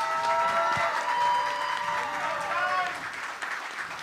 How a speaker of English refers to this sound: Can we just get a round of applause for the amazing women in the panel?